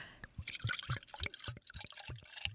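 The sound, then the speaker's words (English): Wine glugs and splashes into a glass in a steady, heavy pour lasting a couple of seconds, with bright liquid gurgles rising over a low rhythmic burble. “Ooh, heavy pour.”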